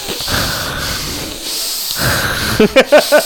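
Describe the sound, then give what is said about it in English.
A person imitates heavy breathing: long, raspy, noisy breaths, then a rapid run of four short, voiced, snorting gasps at the end. “I was like, why is he breathing that hard?”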